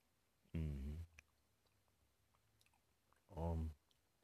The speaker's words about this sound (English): Eat my beef stick, chewing and smacking.